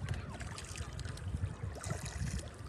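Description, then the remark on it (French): Calm water of Mirror Lake at Lake Placid laps and trickles softly against a kayak in the middle of the lake, a steady gentle gurgling over a low, continuous rumble, with no voices. “Je vais vous faire écouter un petit peu. Je suis au milieu de Mirror Lake.”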